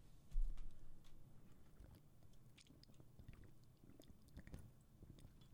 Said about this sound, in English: Excuse me. Had to sip before this.